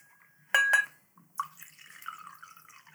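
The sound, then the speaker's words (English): A brief glassy clink, then wine glugs and splashes steadily into a glass for a second or two, clear, its pitch rising slightly as the glass fills. No one speaks. “can you fill me up, please?”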